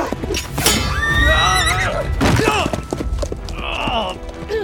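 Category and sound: animal, horse neighing and snorting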